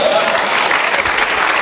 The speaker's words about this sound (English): Who highlighted it? The same man? Oh, then clap for him.